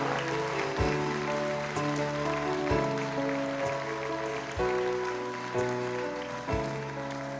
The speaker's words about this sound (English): Let's applaud the people that just stood up and committed their life to Christ.